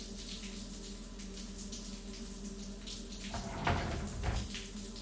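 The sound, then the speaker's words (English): Steady rush of running shower water fills the whole stretch, a constant hiss with a low hum beneath, briefly growing louder and splashier near the end. No one speaks. “Do you want me to shower with you?”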